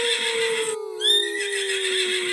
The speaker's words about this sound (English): The horse shied and neighed in terror.